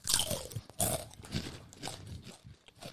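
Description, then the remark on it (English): Loud, crackly crunching of spicy chips being chewed, with bursts of brittle snapping that come in an uneven rhythm over about three seconds, with no talking. “I definitely like them better with the actual corn chips. Way better than the waves.”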